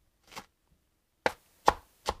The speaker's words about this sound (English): Chopping lettuce with a sharp knife is pretty satisfying too. But also, then again, chopping anything with a sharp knife is satisfying.